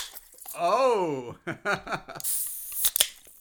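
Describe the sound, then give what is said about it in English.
A voice exclaims and others murmur, then two cans of Guinness Draught Stout crack open with sharp pops and a loud, bright fizzing hiss as the gas rushes out. “you also brought in two cans of the special Guinness Drought Stout, which apparently is supposed to like make some kind of crazy”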